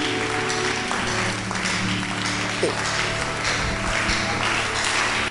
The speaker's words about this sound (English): Clap your hands and give the Lord some praise.